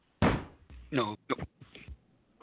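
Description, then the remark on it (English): A metal chair is shifted and set down with a solid thunk, followed by a few short scrapes and knocks while voices murmur in the background. “Judge's chair doesn't look very good, so I'm going to give him this chair.”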